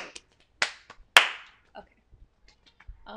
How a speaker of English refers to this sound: who is clapping obnoxiously loud?